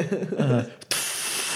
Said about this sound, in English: As you spray foam explosives on the back of the truck.